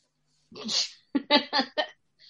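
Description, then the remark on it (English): Someone blows their nose with one long, forceful, hissing burst, followed by a quick run of four shorter, sharp honking blows and a faint sniff at the end. “I need to blow my nose because I'm that disgusting.”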